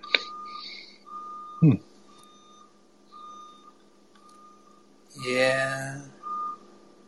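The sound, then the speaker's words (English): Reversing beeps from a car repeat in a steady, evenly spaced series, faint, while a brief loud voice-like sound and scattered background noises break in; a neighbour is moving in. “There's some beeping.”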